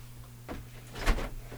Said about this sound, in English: She fell in there. She fell in the chair. You heard it? You heard it?